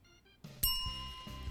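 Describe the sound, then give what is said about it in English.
A bright jingle bell rings out, starting with a few soft tones and then a sharper, louder shimmer that sustains for a moment, heard on its own without any talking. “Jingle. Bell.”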